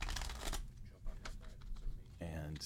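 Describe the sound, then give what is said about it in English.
A deck of cards being shuffled, with rapid papery riffles and flicks in uneven bursts, and a brief voice speaking near the end. “And so now I'm doing a little bit of shuffling here.”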